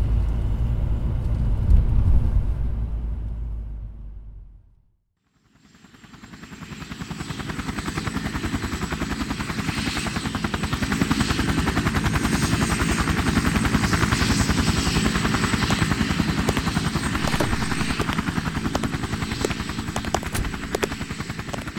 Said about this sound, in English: A helicopter? Now I know who rates around here.